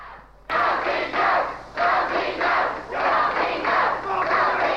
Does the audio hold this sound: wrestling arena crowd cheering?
yes